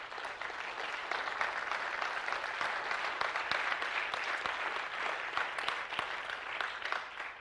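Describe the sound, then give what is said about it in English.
A church audience claps hands in praise to the Lord, a dense, steady wash of many overlapping claps that holds at an even loudness throughout, with no voices standing out. “You ought to be giving the Lord a hand clap of praise for that.”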